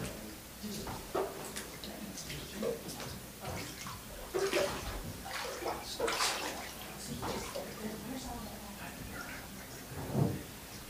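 Water splashes and runs in a baptismal pool as a person is baptized, with irregular sloshing bursts over a steady watery rush, moderately loud, with no talking.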